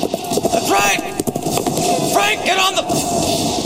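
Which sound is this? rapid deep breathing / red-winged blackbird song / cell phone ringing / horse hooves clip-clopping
horse hooves clip-clopping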